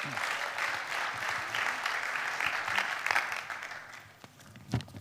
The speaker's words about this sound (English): so let's give her a hand as she comes forward.